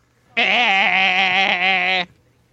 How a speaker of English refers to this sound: Do I have, like, a goat sitting on my lap or something?